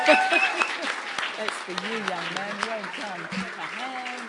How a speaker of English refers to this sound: Our teenagers leading the way. Love it. Yeah, give him another clap. Yeah, come on. Good job.